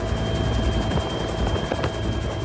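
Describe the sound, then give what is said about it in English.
A helicopter drones steadily, its rotor beating a fast, even rhythm over a dense engine roar that stays loud and constant throughout, with no voices; a helicopter trip out of Kabul to Ghazni. “It was one of the very first trips I made outside of Kabul by helicopter.”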